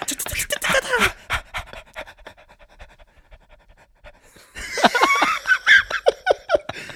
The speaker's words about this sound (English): breathing heavily into his microphone. Some ASMR for For all you folks out there who love it. You didn't ask for it, but you got it.